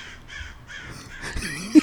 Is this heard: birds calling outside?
yes